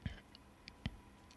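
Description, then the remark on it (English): Two distinct, crisp computer mouse clicks, with a few fainter ticks scattered between them. “Go all the way up to the top. Mm-hmm. And that one right there. I'm clicking on.”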